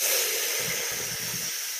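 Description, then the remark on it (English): A person imitates a sharp, deep hissing breath, like an anime or manga character preparing to do an attack: one steady, breathy hiss lasting about two seconds, with a low rumbling undertone partway through. No words are spoken. “Yeah, just that sharp, like, deep hiss, inhale, or exhale, just like, yeah, the solo panel dedicated to it.”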